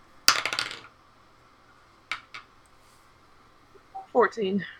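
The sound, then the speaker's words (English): Dice clatter across a hard tabletop in a quick burst of rattling clicks, rolling a 19, followed by a couple of isolated knocks, then a voice briefly starts speaking at the end. “I rolled a 19 on the dice.”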